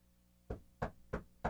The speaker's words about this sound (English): Knock on wood.